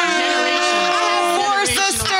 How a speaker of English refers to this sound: Hit the air horns.